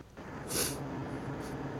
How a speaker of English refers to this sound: Sorry if you hear me sniffling, guys. I'm trying to keep it under control. Stupid allergies.